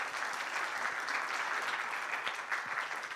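A church audience gives a round of applause, many hands clapping together in a dense, even wash of sound that holds at a constant level for several seconds without any voices.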